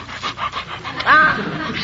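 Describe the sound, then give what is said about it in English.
A Great Dane pants in quick, steady breaths while licking a person's face, with a short high whine breaking in partway through before the rapid panting carries on. “Stop licking my face.”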